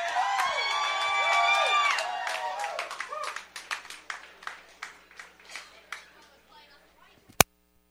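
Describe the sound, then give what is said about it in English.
A crowd bursts into loud cheering and whooping with steady applause for performer Brother John Basson, then the cheers fade while scattered claps continue and taper off, ending with a sharp click. “Many of you, this might be the first time, so let's give a big round of applause for Brother John Basson.”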